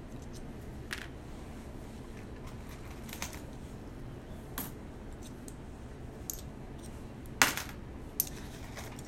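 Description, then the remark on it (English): Coins clink sporadically as they are sorted and picked through for shiny memorial coins: light metallic taps scattered over a steady low background hum, with a brighter cluster of clicks near the end. No one speaks. “I'm being really picky here on what coins I'm getting.”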